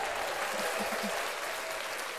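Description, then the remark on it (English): A steady burst of applause played as a sound effect from a button, dense and even clapping from a crowd that holds a constant loud level for a couple of seconds without a break. “Can we applaud?”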